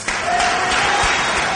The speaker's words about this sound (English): Everybody, please give a huge round of applause for my good friend